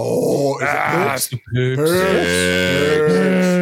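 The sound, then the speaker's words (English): A cat, Sally, gives loud, drawn-out meowing cries: a wavering call, a brief break, then a longer sustained yowl with sliding pitch, continuing to the end with nothing else over it. “Meow, what is going on here? I told you the cat's been weird today.”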